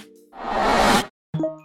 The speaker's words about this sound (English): Wait, what? A notification that Cam liked my photo?